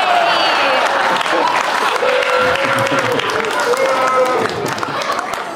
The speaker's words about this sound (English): Wait, are you booing Bill Cosby or me mentioning Bill Cosby? Who are you mad at?